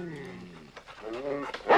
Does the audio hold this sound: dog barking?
yes